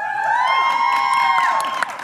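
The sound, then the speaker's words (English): A live crowd cheers and shouts loudly and steadily for about two seconds, voting by noise for a sleepover with Freddy Krueger, with sustained high-pitched screams and whoops riding over the roar. “All right, make noise Freddy's if you would badass.”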